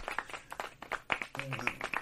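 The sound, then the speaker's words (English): A quick run of sharp hand claps in an uneven rhythm, moderately loud, with a brief voice sounding partway through. “So there's a good chance that she might not make it, and for that, we clap it.”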